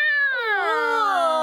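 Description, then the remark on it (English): A person imitates a cat in heat with a single loud, drawn-out yowl, holding a steady pitch and then sliding down into a lower, wavering wail for over a second. “What about when a cat is in heat? Oh, they...”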